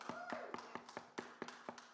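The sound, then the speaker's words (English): A quick run of about nine sharp knocks on a door, evenly spaced, each one crisp and short, with no talking over them. “And all of a sudden, there comes a knock.”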